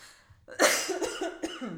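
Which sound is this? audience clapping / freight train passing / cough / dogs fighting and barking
cough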